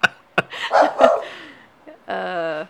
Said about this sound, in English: Bow wow, Kuma. Bow wow. This is laughter, Kuma. She doesn't recognize it. Chill out, dog. Quiet.